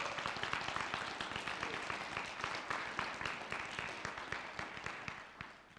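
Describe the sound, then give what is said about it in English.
A crowd claps steadily in congratulations and appreciation for mothers on Mother's Day, with dense, overlapping hand claps forming continuous applause that holds at a moderate level and tapers slightly toward the end. No voices stand out. “Should we get one more hand clap and congratulations and appreciation for our mothers?”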